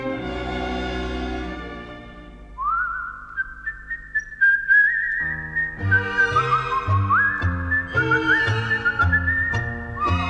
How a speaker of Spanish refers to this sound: y un reo meditabundo va silbando esta canción.